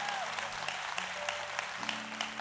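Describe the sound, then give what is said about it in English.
The Go Church audience claps steadily and greets one another, a dense wash of many hands, with a sustained organ or keyboard chord and faint voices murmuring greetings underneath. “Let's clap and greet one another like we've never done it before.”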